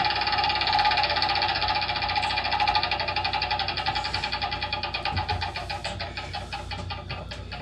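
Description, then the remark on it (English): A prize wheel spins with a rapid, steady stream of bright clicks that gradually slow and spread apart as it winds down. No one speaks over it. “I said, spin the wheel, asshole.”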